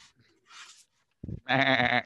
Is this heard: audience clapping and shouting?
no